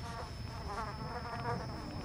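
A mosquito's thin, steady buzz drones on without a break, fairly clear, with no voices.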